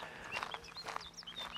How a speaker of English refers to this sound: I guess you can hear the birds. Can't see it, but assume it's a, I don't know what it is. Just best to admit that I'm not an expert on birds, even though I like them. I like to watch them and to hear them.